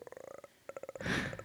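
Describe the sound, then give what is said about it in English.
A deep, guttural growl from a young boy, rattling in rapid pulses, pausing briefly, then resuming and swelling into a harsher, breathy snarl before settling back into the throaty rumble. “Surprisingly, it was pretty routine until she heard a deep, guttural growl coming from the younger boy.”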